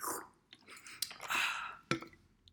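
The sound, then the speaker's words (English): Wet mouth sounds of someone sipping a drink and swallowing, with a couple of sharp clicks and slurps over about two seconds, no talking. “Take a sip, drink, shot of your beverage of choice.”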